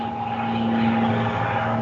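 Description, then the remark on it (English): A steady, droning airplane engine hums overhead, with a low rumbling body and a sustained tonal whine, fairly loud and constant throughout with no voices. “Sorry, that would be a plane.”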